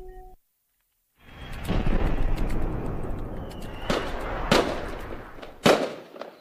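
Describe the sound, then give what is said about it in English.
A fireworks sound effect bursting with a rumbling, crackling roar, punctuated by several sharp loud bangs near the end, boomy with no voices. “That was some of our guys outside. Oh, no, it wasn't. It's great effect, sir.”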